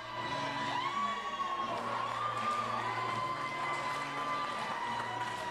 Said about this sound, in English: Fans stomping and clapping in unison. Look at that.